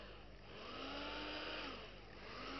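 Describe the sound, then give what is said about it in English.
A steady rushing hiss of solvent boiling and bubbling under reflux as a reaction mixture with dibenzoyl peroxide is gently heated. The sound is dense and continuous for the whole stretch, swelling slightly in the middle, with no voices. “And you see bubbles of the solvent boiling.”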